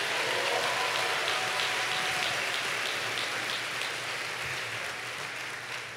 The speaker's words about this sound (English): Would you give God one last round of applause?